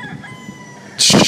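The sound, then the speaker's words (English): A rooster, one of a group of protected roosters, crows loudly, a harsh burst that kicks in near the end after a quiet stretch of low background hum. “So anyways, here I am, surrounded with these endangered, these protected cocks, or roosters, or whatever you want to call them.”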